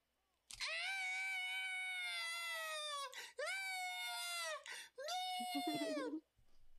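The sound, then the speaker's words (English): A voice imitates loud bawling crying: three long, sustained wailing cries with a rich, strained harmonic tone, each breaking off with a gasp before the next, the last one wavering and cracking. “That's my best attempt at it, okay? Fucking just bawling, crying.”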